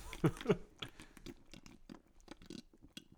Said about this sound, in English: So I'm not even going to say anything. I'm just going to slurp it loud.